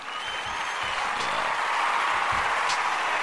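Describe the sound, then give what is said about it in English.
Loud, sustained clapping from many hands, given in celebration of the start of Black History Month, fills the whole stretch. It is a dense, steady wash of applause with no speech over it. “Let me get some hand claps. We're going to do the real loud ones for the people.”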